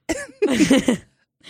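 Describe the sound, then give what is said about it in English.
A man coughs, a short hack followed by a longer, rougher cough with a raspy voiced edge, then quiet. “He just coughed while we're doing our podcast.”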